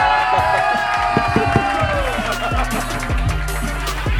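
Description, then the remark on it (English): An audience at a comedy show cheers and whoops loudly, a dense roar of many voices with scattered high shouts and claps, sustained and steady for about four seconds with no single voice standing out. “Jared from Subway, everybody. Give it up.”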